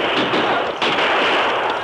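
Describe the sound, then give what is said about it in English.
A dense volley of gunfire as Rangers return fire from both sides of a canyon, many shots overlapping into a continuous crackling roar that stays loud throughout, with a sharp burst of fresh shots about midway through. “The Rangers leaped from their saddles and spread out as they returned the fire from both sides of the canyon.”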